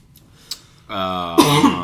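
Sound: cough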